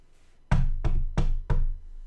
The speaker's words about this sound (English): And someone knocks on the door and let's just role play this.